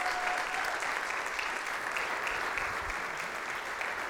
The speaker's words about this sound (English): And so can we do something? Can we just give her a round of applause for being willing to do this, even though it's not normal, and just help her to feel encouraged to bring the word this morning?